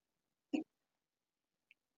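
human body sound, hiccup

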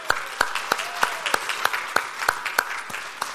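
crowd, audience cheering and applause

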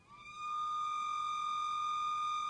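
signal or alarm, whistle being blown

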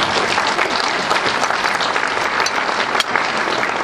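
crowd, audience clapping

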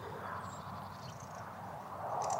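bird, birds singing outdoors

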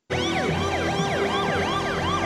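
vehicle, ambulance siren

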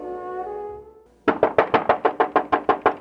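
household object, knock on a door

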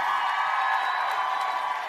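crowd, audience applause and cheering

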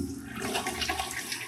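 sound effect, toilet flush sound effect

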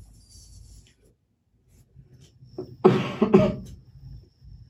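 human body sound, coughing

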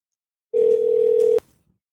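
signal or alarm, telephone dial tone

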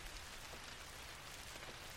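nature, heavy rain falling

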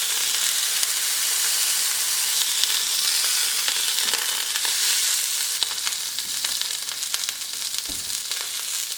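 food or drink, steak sizzling

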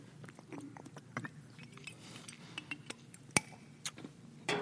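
food or drink, speaker drinking water

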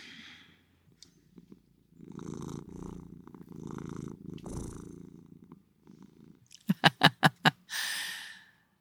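animal, cat purring

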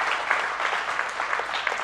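crowd, audience clapping hands

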